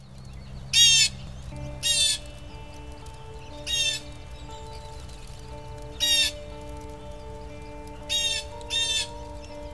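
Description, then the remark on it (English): Harsh, raspy blue jay calls ring out six times at uneven intervals, each a short loud squawk, over a faint steady background hum. “It has an enthusiastic, sharp ja or jay call that cuts across a wide swath of audio frequencies and stands out easily even in a noisy environment.”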